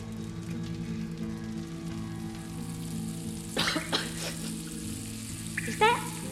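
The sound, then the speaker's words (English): Bacon fries with a steady, crackling sizzle that holds throughout, punctuated by a few sharper bursts of popping and spitting, with a low hum underneath and no one talking. “Is that bacon up there?”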